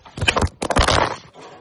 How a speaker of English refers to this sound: Whoops, we just had an accidental. I knocked the phone out of the cameraman's hand. Sorry about that, guys.